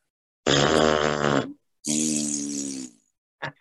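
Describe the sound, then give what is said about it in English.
Mouth-made fart noises made by people on a count of three: two long, loud, buzzing raspberries blown one after another, each about a second, then a quick short sputter at the end. No talking. “If I count to three, will we all make a fart sound?”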